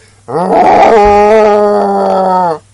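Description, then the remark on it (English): A person's voice imitates a whale's roar: one loud, drawn-out groaning note, rough and raspy at the start, then a steady tone for about two seconds. “He goes... Roar! And I go, oh, what is that? That's a whale.”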